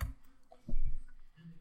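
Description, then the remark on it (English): Soft typing on a computer keyboard, a handful of quiet, irregular key clicks and taps with a low thump or two, with no one talking. “You're typing, and I'm getting my color on.”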